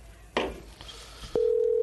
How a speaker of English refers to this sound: why don't you start so we don't have to listen to the phone ringing?